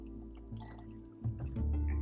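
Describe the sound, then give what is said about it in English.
A quiet sip of Dr. Pepper Zero soda, with soft wet slurping and a gulping swallow that grows slightly louder toward the end. No one speaks. “So if you hear a pause, I might be just taking a sip as I get through what I want to talk about today.”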